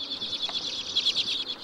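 Common redpoll calls: a continuous stream of high, rapid twittering notes blending into a busy chatter, fairly soft and steady throughout, with no voices.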